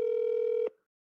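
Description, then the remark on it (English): A single steady ringback tone from a phone on an outgoing call placed during the live show Kind of Funny Games Daily, loud and clear for under a second before cutting off abruptly into silence. No one speaks. “This phone is ringing.”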